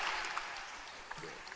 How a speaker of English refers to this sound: Clap your hands